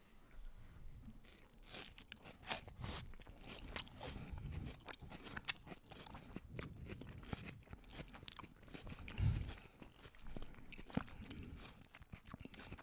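Wet, crunchy chewing of food with raw onions goes on steadily, with sharp crisp bites breaking through the repeated mastication sounds; no one speaks, and the crunches come irregularly at a moderate volume.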